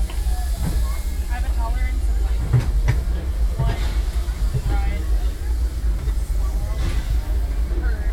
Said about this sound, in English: Hello, everyone. Thanks for joining us on the Disneyland Railroad. For a safe ride, remember to stay seated with your hands, arms, feet, and legs inside the train.